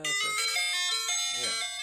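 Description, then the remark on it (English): A short, bright electronic ice cream truck jingle plays, its tinkly melody stepping through a few sustained chime-like notes at steady volume. “And there's an ice cream jingle, okay? And so I think everybody knows the ice cream truck song”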